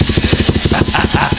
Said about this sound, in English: This is a drill. It's moving. It's real.